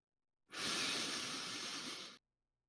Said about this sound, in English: If you want to hear some lip smacking, you want to hear us breathing,